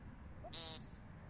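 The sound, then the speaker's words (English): A male woodcock's courtship display call, given in tall grass as the bird turns his body and opens his bill wide: one short, buzzy, nasal note, fairly loud, over a quiet, faintly rumbling background with no talking. “she hears a woodcock, and that's when we spot our first courtship display.”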